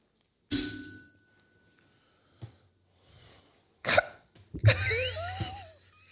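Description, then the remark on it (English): A single bell is struck once, giving a bright metallic ding whose high ringing tones fade within about half a second. Several seconds later come short, noisy bursts of voice. “Because I was going to say something and then I caught myself and I just had to hit the bell.”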